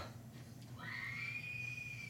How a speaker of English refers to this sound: Great scream. That's a great scream. I'd be screaming like that too.